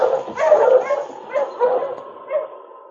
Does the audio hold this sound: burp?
no